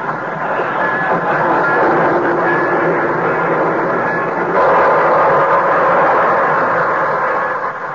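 A train, the Torontoan, pulls into a station on track 6 with a loud, steady rumble and clatter of rolling cars, the noise swelling slightly about halfway through and continuing unbroken.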